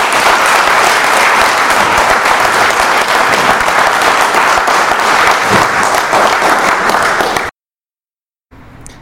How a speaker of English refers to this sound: And let's give him a big applause.